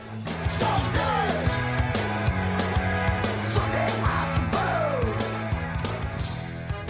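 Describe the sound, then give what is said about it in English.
A loud, full-band song chorus where a group of voices shouts "someday" together over a driving bass line and dense instrumentation that stays steady and energetic the whole way through. “The lyrics are pretty great for telling off your inner toucan't, but I really like the chorus where everybody shouts someday together.”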